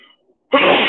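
A single loud sneeze bursts out abruptly after a brief near-silent pause, a sharp explosive rush of breath that carries through to the end.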